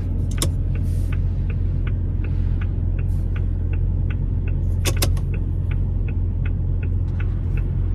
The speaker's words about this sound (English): That's cool. It's a cool turn signal. If you're going to have fake sound effects like all cars now do.